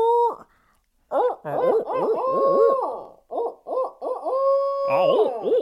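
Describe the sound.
A person imitates owl hoots with the voice to sound like two different owls: first a drawn-out call modeled on a rooster crow, with wavering pitch, then steadier, more ordinary owl hoots. Several loud calls come in a row.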